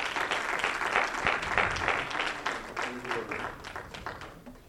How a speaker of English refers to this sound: Y'all give God a hand clap of praise.